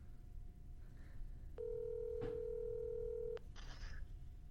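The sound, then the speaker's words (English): A phone call being dialed: a steady electronic line tone holds for about two seconds over low background hiss, with a couple of brief clicks and rustles around it. “All right, so now we're going to get John on the phone.”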